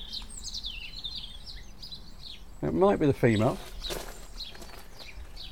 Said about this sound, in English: Female robins do sing a little as well. It's not only males that sing sometimes.